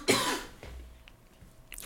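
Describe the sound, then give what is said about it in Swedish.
A harsh cough bursts out loudly, followed by a quiet pause, then a second cough begins abruptly right at the end. “Jag har fan hostat så här i typ... Ja, för länge.”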